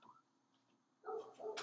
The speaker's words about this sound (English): Oh, I hear the dog now.